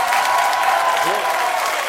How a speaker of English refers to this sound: For the people, and he gets a big pop from the crowd because it's true.